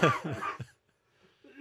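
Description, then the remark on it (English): A loud coughing fit from a person who is unwell, set off by laughing: four rapid, harsh coughs in quick succession, then a short silence before another throaty rasp starts to rise at the end. “Yeah, but if I make you laugh, you just go into a coughing fit.”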